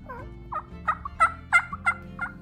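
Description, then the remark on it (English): A person imitates a hen (female) turkey during a turkey call competition, giving a steady series of about seven short, nasal yelps, evenly spaced and fairly loud, with no talking. “First up is the hen, or female turkey.”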